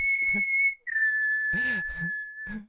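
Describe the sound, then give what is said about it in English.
A clear, high whistled melody of two long, steady held notes with a brief break between them, fairly loud, while short muffled voice-like sounds pop up underneath. “I don't really want to talk too much because I just hear that whistle in my dreams.”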